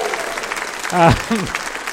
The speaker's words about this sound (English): So I'd like to give James Hingley a massive round of applause for his terrific work.